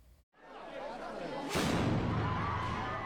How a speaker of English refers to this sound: An explosion is heard at a venue where Japanese Prime Minister Fumio Kishida was due to make a speech on Saturday. Police detained a suspect who threw what appeared to be a smoke bomb.